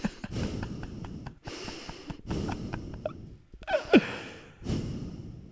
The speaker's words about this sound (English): They can only hear my breathing.